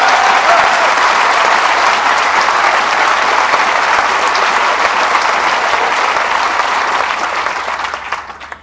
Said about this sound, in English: This is about the awesome Val McDermid. So give her another massive round of applause.